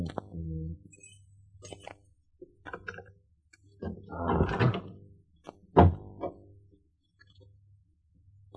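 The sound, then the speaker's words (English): Metal skeleton keys jiggle and click in a door lock, a few scattered ticks and scrapes, then a louder rattling burst and a sharp clunk as the door is worked open, fairly quiet. “After a couple of minutes of pressing the gold-plated buzzer, I took out my skeleton keys.”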